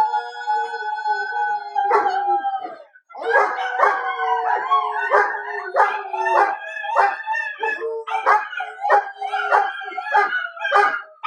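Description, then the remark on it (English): A dog howls continuously, a long wavering howl followed by a series of rising, yodeling howls and yips, loud and alone with no talking. “Can you give it a howl?”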